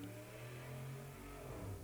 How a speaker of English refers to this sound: Sorry, I've just got to park my car in the garage here. Got the hot rod.